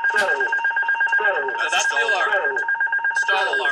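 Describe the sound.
A cockpit stall warning alarm sounds continuously as a steady, high electronic tone after the pilot pulls back on the side stick, raises the plane's nose and the aircraft falls, with voices talking over it throughout.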